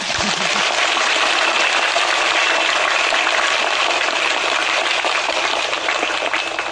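Sustained, dense applause from a large crowd inviting the Master to give a teaching, a steady roar of many hands clapping at once that holds at full volume throughout without a break.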